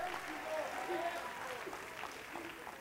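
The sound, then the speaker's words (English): A church audience claps their hands in praise to the Lord, a steady, dense wash of applause with faint voices mixed underneath. “Let's clap our hands unto the Lord and give him praise.”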